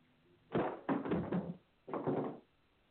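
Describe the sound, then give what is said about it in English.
Knocking on a door in two bursts: a quick run of several firm knocks, a short pause, then a second cluster of knocks, distinct with no talking. “Who's knocking on the door?”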